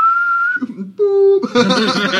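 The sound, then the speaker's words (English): A short whistle holds one steady high note, then a lower note after a brief pause, and giggly laughter and voices break in right after. “Like, can you whistle?”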